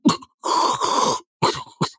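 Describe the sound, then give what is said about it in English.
Someone breathing softly through the nose tries to snore, with a short grunt, then a long, rough, throaty rasp, followed by two brief harsh snorts. No words are spoken. “Now breathe very softly in a rhythm through your nose and try to snore.”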